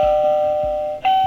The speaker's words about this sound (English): And there she is, perfectly on time, the old doorbell.